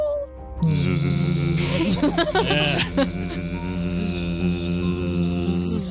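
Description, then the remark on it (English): A dense, droning buzz of a fly swarm from down in a hall swells in after a brief quiet start and holds steady and fairly loud, its whine wavering and thickening in the middle before settling. “But all of you are able to hear a very faint but distinct buzzing from down in the hall.”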